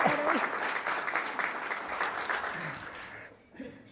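A church audience applauds together for a member's 12th anniversary, a dense, steady crackle of many hands clapping that holds for about three seconds before thinning out, with a few faint voices underneath.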